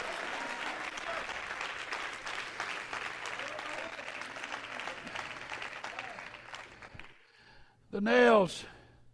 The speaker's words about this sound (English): Everybody clap your hands today.